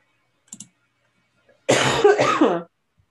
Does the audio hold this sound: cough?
yes